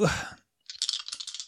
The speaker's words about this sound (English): There's something just sonically unpleasant about the dice that are the size of like a baby's fist. That's a 9.